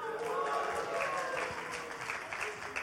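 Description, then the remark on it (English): A small group cheers and claps together, whooping voices over a steady patter of hands that keeps up evenly for a few seconds, fairly lively, cheering on children as they set off to hunt for hidden items. “Let's give them a cheer.”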